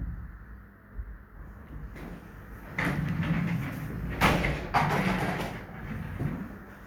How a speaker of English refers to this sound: I was sitting on a chair and I never realized that I kept going down and down and down and down.